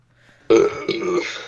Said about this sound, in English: Wow, burping into the mics. We're really classy.